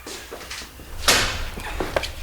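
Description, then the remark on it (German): An old, rickety entrance door, nearly falling off its hinges, is pushed open with a sudden loud, rough scrape about halfway through, followed by lighter knocks and shuffling movement; no one speaks. “Hier muss der Eingang sein. Die Tür fällt ja gleich aus den Angeln.”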